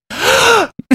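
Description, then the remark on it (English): A single exaggerated, voiced intake of breath taken between words, drawn out for over half a second with a rising then falling groan-like tone, loud, followed by a couple of brief mouth sounds. “takes the big breath in between her words.”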